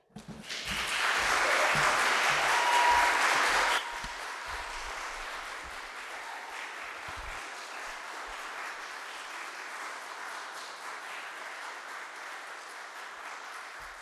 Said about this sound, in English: I'm just going to keep fidgeting until you stop. So that's your one opportunity to clap for me. So thank you for doing that.